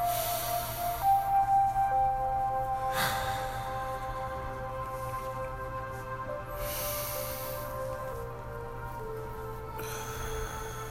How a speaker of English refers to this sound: we're going to start this with breathing. Slow it down. Relax your mind, body, and spirit in your nose.